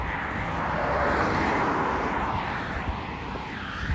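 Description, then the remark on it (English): Around twenty heavy semi trucks roar past in a steady, continuous rumble, deep engine and tire noise swelling slightly as they pass, loud throughout with no talking. “dang, oh my god, there's like 20 semi trucks driving by only when I need to record.”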